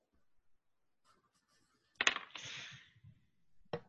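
A sharp clack, then a brief rattling clatter of dice tumbling across a hard surface for a power roll, with one more click a moment later. No one speaks.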